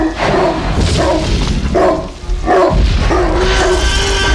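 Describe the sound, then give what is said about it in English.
A dog barks repeatedly in short, evenly spaced bursts over a constant low rumble, fairly loud and close, with no one talking. “And actually, if you view Jurassic Park again, if you listen critically with your ears, you will notice that underneath the entire film, you can faintly hear a dog barking for the entire 2-hour, 13-minute runtime.”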